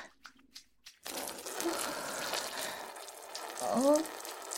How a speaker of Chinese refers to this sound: 我要尿在你的脸上，给你做一场骚尿淋浴。